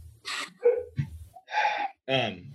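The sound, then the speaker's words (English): Several sharp, harmonic barks from dogs fire off in quick, irregular bursts, loud, with short gaps of quiet between them. “gosh dang dogs.”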